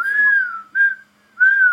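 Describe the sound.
A person whistles a short tune: three clear, sustained whistled notes with brief gaps between them, fairly loud, with no talking over it.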